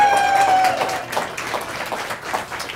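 An audience claps together in a dense, steady patter of many hands as a voice-and-clapping vote on names read out, opening with a brief high-pitched whistle or cheer, then continuing at a fairly even level for a few seconds.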